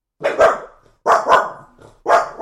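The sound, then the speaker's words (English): The speaker's female dog barks three times, loud, roughly once a second, with short pauses between the barks and no voices. “At least my dog shut up and stopped pissing on stuff.”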